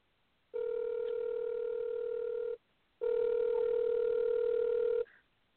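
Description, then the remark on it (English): An outgoing phone call's ringback tone, from a call placed to a woman on a second phone, sounds twice: two steady buzzing rings about two seconds each separated by a short pause, clear and alone with no talking. “Okay, I'm calling her right now from my other phone to find out what's going on.”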